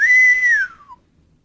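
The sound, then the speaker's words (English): A single loud human whistle of excitement holds a bright steady pitch for about half a second, then glides smoothly downward and fades out, with no talking around it. “Do you hear that whistle?”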